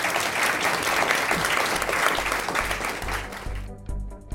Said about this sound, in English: So let's give our guests a round of applause.